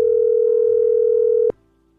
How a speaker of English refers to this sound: All right, this is her phone now ringing.